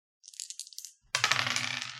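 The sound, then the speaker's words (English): Dice rattle with a quick run of light, high clicks, then spill onto a table in a louder, dense clattering tumble that keeps rolling until the end. No one speaks. “Give me that roll.”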